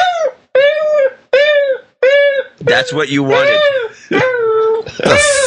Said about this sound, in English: What is that, man? That's wrong. What have you done to this dog? It's a basset hound, and he likes to talk. He's not talking. He's crying. He's like, feed me, feed me. I need some food, please. Finally, give me some food.